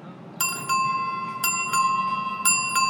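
A rack of bicycle bells on Main Street in Grand Junction, Colorado, in front of a bike store, rings in three quick ding-ding pairs, bright and metallic with a lingering tone, over a low murmur of street noise.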